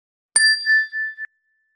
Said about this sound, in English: You can gently close your eyes, and we'll begin the meditation with the ring of the chime, and we'll end the meditation with the ring of the chime.